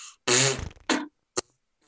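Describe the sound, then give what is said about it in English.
A loud, raspy trumpet-style lip buzz blown into cupped hands instead of a mouthpiece, with a long flatulent burst followed by two shorter blasts, the last one very brief. “And if you don't have money, you just take your hands like this. We have a buzz.”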